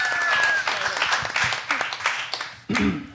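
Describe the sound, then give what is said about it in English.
A loud round of audience applause at the start of a show, a Game of Thrones spec script reading, with dense, crackling clapping and a brief whistle at the start, which fades over a few seconds before someone starts talking. “All right, give a big, big round of applause and let's start this show!”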